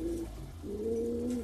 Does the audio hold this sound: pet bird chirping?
yes